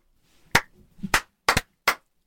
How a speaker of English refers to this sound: So I'm giving that a slow clap into a big clap. Yes. Wow.